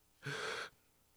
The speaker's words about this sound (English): When I breathe, I would take those out. Especially the really heavy breaths. I'm not doing that. Those ones that you just did.